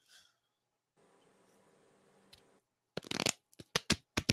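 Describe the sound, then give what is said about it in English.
Playing cards being shuffled by a person using their chin instead of their hands: a soft, fluttering riffle first, then a quick series of louder, crisp card snaps and rustles, with no talking. “So, yes, I will try and shuffle it with my chin.”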